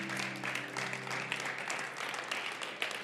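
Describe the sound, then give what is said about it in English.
An audience claps steadily, giving God a hand clap of praise, a dense wash of many hands filling the whole clip at an even, fairly loud level, with a low sustained hum underneath at the start. “Come on, would you give God a hand clap of praise?”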